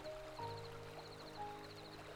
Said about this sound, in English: There is a brook to my side, and I'm walking over there now. The water is finding its way along this brook with great efficiency.